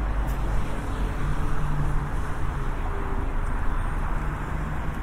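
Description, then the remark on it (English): Steady, continuous rumble of cars driving across a bridge through traffic barriers that have just lifted together to let them through, with a low engine drone and broad roadway noise that holds evenly throughout and no voices. “With a neat, quick movement, the barriers that come down in front of the cars that control the traffic just came up together as if in an incredibly well-rehearsed dance to let the cars through.”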